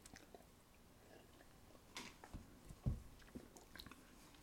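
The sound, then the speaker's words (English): Quiet wet mouth sounds: a sip of a beer made with apples, cranberries and cherries, followed by the beer swishing and squelching in the mouth, with a few soft clicks and a sharper smack near the end, no one speaking. “Listen to a sip. Yeah, and swish around in our mouths, and it's all.”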